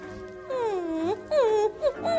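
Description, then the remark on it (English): A whimpering moan: a drawn-out, wavering whine that dips and rises in pitch, then several shorter, high whimpers in quick succession, fairly loud, with no talking. “They're candy-coated mush with a whimper to every bite.”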